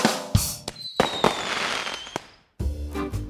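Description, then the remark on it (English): Fireworks going off: a few sharp booming bangs, a whistling rocket trailing through crackles, a brief silence, then another loud burst of crackling explosions. No one speaks. “Because only fireworks on the 4th of July.”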